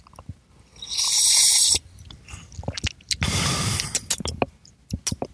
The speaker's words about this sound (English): So let's take a sip here.